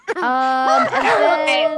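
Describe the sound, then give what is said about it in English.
A dog howls along with someone singing, its long, wavering notes sliding up and down, loud, throughout the brief moment. “You're making my dog sing.”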